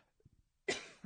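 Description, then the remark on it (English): A single sharp cough bursts out after a few faint low throat sounds, followed by a brief rough tail of breath. “I'm coughing now because it's that time of night.”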